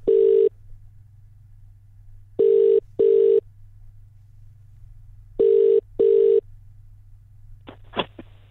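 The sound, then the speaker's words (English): A telephone ringing tone sounds in paired bursts over a steady low hum, repeating three times, followed by a couple of sharp clicks as the line is picked up. No one speaks. “I've got a phone call to make in just a second.”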